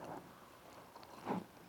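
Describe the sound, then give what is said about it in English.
A quiet sip of water with a soft gulp, two brief wet mouth sounds separated by a pause, with no talking. “I'm going to grab a sip of water here.”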